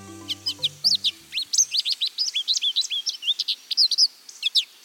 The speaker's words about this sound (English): This American goldfinch has recently molted. Its old worn-down feathers have fallen out, and new ones have grown in.